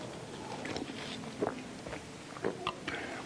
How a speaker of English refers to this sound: It gives me a moment to take a drink of my much-needed water.